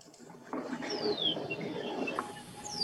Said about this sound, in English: All right, thanks for that, and the beautiful bird music in the background. It's wonderful.